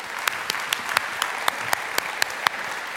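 A group applauds steadily, a dense wash of clapping with a few louder, sharper claps punching through in a regular beat, moderately close and without any voices.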